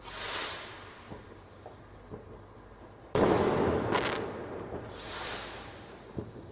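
Fireworks going off outdoors: rising whooshes, a sudden loud bang midway followed by crackling and fizzing, then another whoosh and a few scattered pops near the end.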